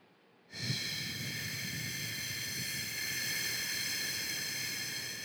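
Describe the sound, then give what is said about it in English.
After a brief silence, a person demonstrates a long, steady exhale that begins abruptly and continues as an even, breathy rush of air for several seconds, fairly loud, with no talking. “What about breathing out?”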